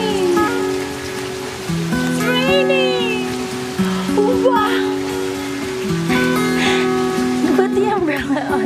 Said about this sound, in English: Wow. First time touching rain. I know. Oh my gosh. How does it feel, baby? Kick it. Here, this is called rain.